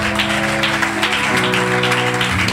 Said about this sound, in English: On Wednesday at midweek, I declared that this month is our month of spiritual consistency. I thought you would clap to that one.